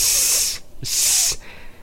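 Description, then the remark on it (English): A person makes two sustained, sharp hissing S sounds, each lasting about half a second, separated by a brief pause, like a snake imitation. “Wait, do an S noise? Snake.”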